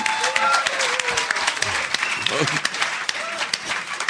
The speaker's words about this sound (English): The fact that you applauded that is really, it's appalling. See, it paid off. Hebrew paid off.